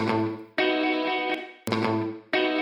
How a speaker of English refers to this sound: And I really kind of want that to like cut to silence there. So I'm going to actually chop the guitar and just let the reverb that we have on it.